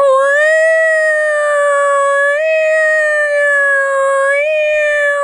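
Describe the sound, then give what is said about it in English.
A voice imitates an alarm with one long, steady, high-pitched wail that holds for about five seconds, nudging slightly higher in pitch twice along the way, loud and alone. “So, I wish I had an alarm sound, because if I did, I'd be playing it like...”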